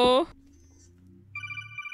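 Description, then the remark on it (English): A phone ringtone for an incoming call chirps in a quick run of bright electronic pulses near the end. It follows a brief voice at the start and a low background hum. “Guess who's getting another phone call?”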